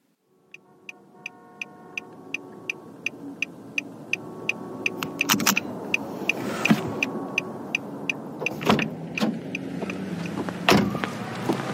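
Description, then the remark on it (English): A car engine breaking down: a steady rhythmic ticking runs over a rising engine drone, then a rough low rumble with several loud, sharp clunks and bangs. No one speaks. “Ah, fuck. The engine again? God damn, man, just my luck.”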